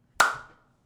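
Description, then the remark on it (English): A single sharp hand clap cracks out on its own, followed by a short ringing tail that fades within about half a second; no voices accompany it. “We got to clap up today.”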